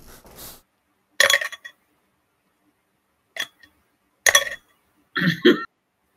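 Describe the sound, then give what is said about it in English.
Dice rolled with advantage in a game clatter in four short, sharp rattling bursts separated by pauses of silence, each a bright plastic clicking tumble that stops quickly. “Roll with advantage.”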